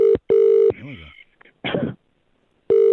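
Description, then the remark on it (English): A loud, steady ringback tone plays on an outgoing phone call returning a call to a phone number that was left, in a double-burst pattern, then returns after a pause. Brief voice sounds and a short rustling noise come in the gap. “Right, well, you left a phone number, so you're going to get a call back.”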